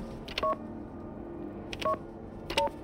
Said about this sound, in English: I dialed my grandmother's phone number anyway.